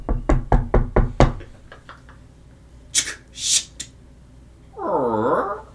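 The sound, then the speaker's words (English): Someone raps firmly on a closed house door, about six quick, loud knocks followed by a few softer taps, then a brief hissing rustle and a drawn-out, wavering vocal sound at the end. “Would you like to knock, or would you like to just try to open it?”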